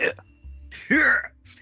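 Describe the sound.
A short, voiced throat clearing: one loud, raspy burst lasting about a third of a second, preceded by a faint catch and followed by a softer breathy trailing sound.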